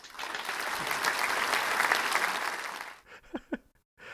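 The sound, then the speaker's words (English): A dense burst of clapping applause fills the first three seconds, steady and fairly loud, then cuts off abruptly as a voice briefly speaks. “Where's my applause?”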